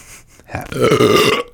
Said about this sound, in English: God, my burps are so fucking gross, dude.